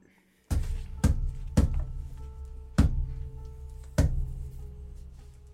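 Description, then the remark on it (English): Five heavy, loud knocks on a locked door in an uneven rhythm, three quick ones then two slower, each leaving a deep booming resonance hanging between strikes; no voices. “I'm going to knock.”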